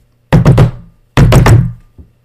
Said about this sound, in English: And he closed the hut door.